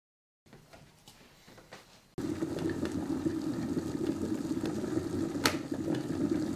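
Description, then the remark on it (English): A kettle of water boiling: a faint, quiet stretch gives way abruptly to a steady, loud bubbling rumble with scattered crackles and pops, continuing to the end. “I don't want too much of the boiling, so I'll ripple edit that too.”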